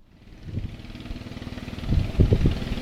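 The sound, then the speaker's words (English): Father Moises's small boat motor runs steadily as he travels onward toward the village of San Miguel under a darkening sky, its low, throbbing drone growing louder toward the end with a few rhythmic surges. No one speaks. “He motored onward to a community where he feared the reception would be different.”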